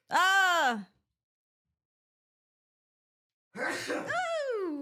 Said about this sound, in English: Oh, I'm going to sneeze.